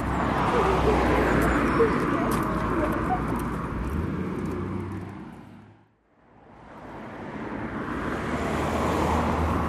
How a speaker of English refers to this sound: as the day gets nearer to lunchtime, the traffic is getting busier. On the approach to the Letchworth Gate.